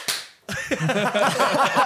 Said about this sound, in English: One clap for Jesus.